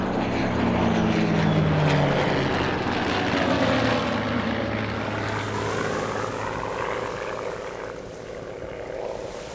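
A propeller airplane roars loudly and steadily, its droning engine thick with harmonic hum that shifts slightly in pitch as it flies by, with no voices over it.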